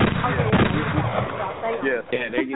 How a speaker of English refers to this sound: Yeah, there you go. With a gunshot.